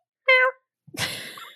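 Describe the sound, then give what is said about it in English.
A person imitates a cat's meow with a short, bright, tonal cry, followed after a brief pause by a longer, breathier, noisier vocal sound, both moderately loud. “Hashtag meow meow. Meow meow.”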